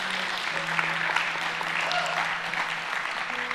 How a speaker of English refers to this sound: If that's ever happened in your life, would you give the Lord a hand clap and say, thank God?